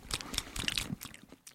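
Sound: crunchy chewing of food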